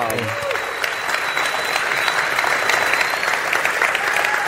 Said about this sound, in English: All right, so give Stephen another round of applause.